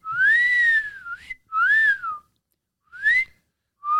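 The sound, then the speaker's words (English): Several loud wolf whistles from boxers in a gym as a woman walks in, each a quick upward swoop that glides back down, repeated about four times with short pauses between, with no talking. “But as soon as she walks in the gym, the boxers in the gym start giving her the wolf whistle.”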